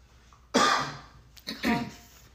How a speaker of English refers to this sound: Cough.